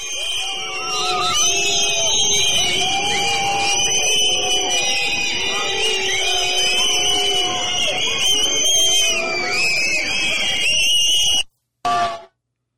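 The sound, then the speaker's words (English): A large crowd at a July 14, 2022 parade in France whistles loudly and continuously, many shrill whistles overlapping with booing, shouting and jeering voices calling for Macron's resignation, for about eleven seconds before it cuts off abruptly. “under the booing and the whistling of the crowd, shouting, "Macron resignation."”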